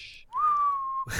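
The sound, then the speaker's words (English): Someone whistles one clear, sustained note that slides up briefly and then holds steady, like a bird call. It is fairly loud, with short breathy hisses just before and after. “Just whistles at me.”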